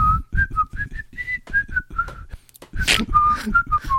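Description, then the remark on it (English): Someone whistles a short, bouncy tune, hopping between notes in a quick rhythm, with soft thumps underneath and a brief breathy pause partway through. “I'm just waiting for him to, like, as he's, like, walking in the garden, just, like, whistling.”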